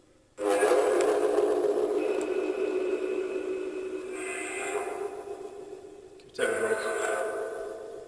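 A loud, sustained train whistle blares almost continuously, with a brief break before sounding again, over a rumbling background of a passing train.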